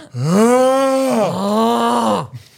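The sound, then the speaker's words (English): A voice imitates a dad's loud snoring with two long, drawn-out groaning rumbles, one after another, forceful, with no other talking. “Your dad's snoring.”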